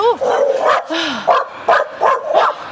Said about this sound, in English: Oh, savage dog behind that gate.